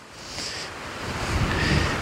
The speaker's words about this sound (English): from the geographical center of Alberta near Swan Hills, Alberta, Canada. I'm in Grizzly Country. And you can hear the wind howl. I'm working with the Rode Wireless Go 2 to see how this sounds out in nature.